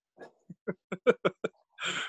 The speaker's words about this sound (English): But yeah, I was able to complain to me about audio, and you got dogs over there going crazy.